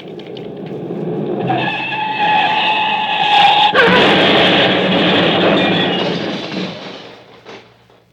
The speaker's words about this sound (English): Reported in stolen car. Large green Daimler speeding south.